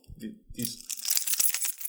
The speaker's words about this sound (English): Are those keys? Old. I have this metal dangly thing that comes off of my key fob that I hate.